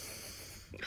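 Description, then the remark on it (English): A person imitates a deep belly breath, a short, breathy rush of air lasting under a second. It is soft, with a slightly stronger push at the very end. “When you do your deep breaths, I always think you're mad at me.”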